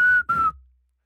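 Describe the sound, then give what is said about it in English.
A person whistles two short, clear notes, the second sliding slightly lower, then the sound fades away into quiet. No one talks. “it's not something you walk away and you're like, I'm going to whistle that tune.”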